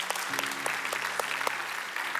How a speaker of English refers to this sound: I don't mean to embarrass the cello player, but boy, she blessed my soul. Just really did. And then just, you can clap for that.